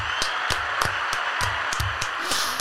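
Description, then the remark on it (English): Steady clapping over a dense hiss of noise, with sharp individual claps landing in a fairly regular rhythm, like a small group applauding, moderately loud and continuous throughout. “So I think, let's give a round of applause for North Korea.”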